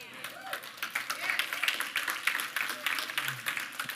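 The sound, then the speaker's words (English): An audience claps steadily, with many dense overlapping hand claps forming a continuous, moderately loud wash of applause that rises and falls slightly over a few seconds. “I'm glad you're clapping because it's going to get worse.”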